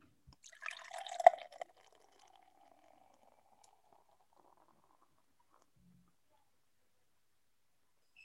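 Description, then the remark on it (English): A quick splashy pour of beer into a glass lasting about a second, leaving a lot of foam, about three inches of head, then a soft fizzing hiss that slowly fades away. Fairly quiet, with no talking. “Oh, I actually got a pretty good pour on this.”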